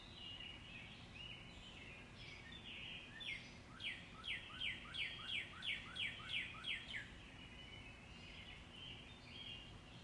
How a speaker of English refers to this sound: All right, let me pull up on my phone so you can hear what it sounded like in my backyard the other day at 4:30 in the morning. It was awesome. All right, you ready? Let me pull this up. Here we go. Isn't that crazy? Hear those birds?